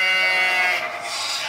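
Sheep bleating loudly and continuously, several overlapping wavering cries blending into one sustained, nasal chorus that dips briefly midway, with no talking.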